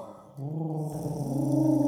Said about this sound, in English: Sorry, what's that? Is that the faint sound of pigeon I hear?